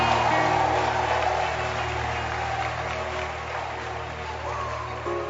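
An audience claps steadily for about five seconds for a woman called up as a bride-to-be, a dense, even wash of many hands that stays loud throughout before easing slightly toward the end.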